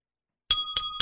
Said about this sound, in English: Where's my dinger bell?